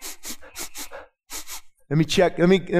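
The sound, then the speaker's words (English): A person makes a quick string of loud, exaggerated sniffs, five in a burst, then two more after a short pause, before breaking into a high, drawn-out vocal sound. “Want me to go back into sin-sniffing mode again for you?”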